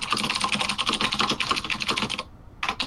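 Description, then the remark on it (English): Rapid, steady clatter of keys on a computer keyboard, fairly loud, with a short pause before a final burst of typing. “Don't worry, I'll just take all that typing out later.”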